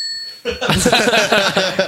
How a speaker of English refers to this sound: Oh, yeah, I thought maybe I'd press the button incorrectly. It's like the bell over a greengrocer's shop.